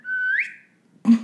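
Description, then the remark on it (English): An alarm goes off: a loud, steady bird-like whistle that slides upward in pitch and trails off, followed after a brief pause by a short, harsher chirping burst. “Sorry, your alarm's going off.”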